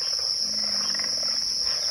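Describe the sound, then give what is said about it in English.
The low, steady growl of an alligator rumbles for about a second beneath a constant high-pitched drone of insects, with faint pig frog and bird calls, in a southern swamp in the morning mist. “Birds, pig frogs, and the deep growl of an alligator greet the visitor out for a stroll through the morning mist.”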